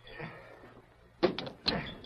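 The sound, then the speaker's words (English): A small-town restaurant door in Cedar Gap opens in mid-afternoon with two quick knocking, rattling bursts about half a second apart, after a stretch of quiet low hum. “the restaurant was deserted when Tonto came through the door”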